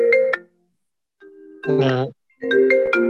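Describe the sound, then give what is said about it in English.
A mobile phone's wake-up alarm rings with a loud, melodic ringtone that plays in three bright tonal bursts separated by short pauses. “Can we all put our phones on silent, please?”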